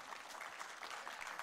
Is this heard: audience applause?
yes